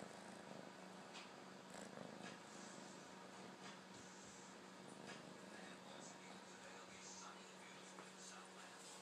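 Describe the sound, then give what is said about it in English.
A cat purrs steadily, a soft continuous rumble with faint rustling mixed in, holding at a low, even level for the whole stretch. “All right, kitty, I'ma sit on you.”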